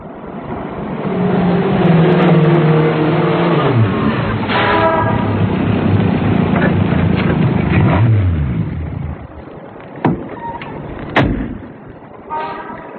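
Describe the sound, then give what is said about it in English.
A car engine runs loud, its pitch rising and falling as it revs and drives, then settles to a quieter idle as the car is parked, with a few sharp knocks near the end. “Well, I got here about 9:55. I parked the car...”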